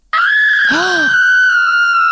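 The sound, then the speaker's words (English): A loud, sustained high-pitched scream sound effect, played from a soundboard by mistake, holds steady for about two seconds, with a brief lower, wavering cry overlapping it partway through. No talking is heard. “I meant to hit this. But okay. I hit a scream.”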